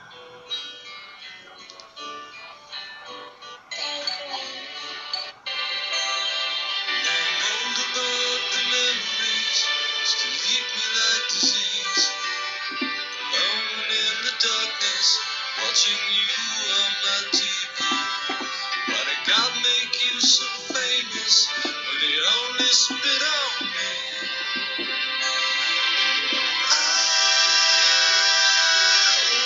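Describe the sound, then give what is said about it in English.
A song plays steadily at full volume, with dense layered tones and a voice-like melody weaving through, building slightly louder toward the end. “The title of the song is called …. And I really like this song.”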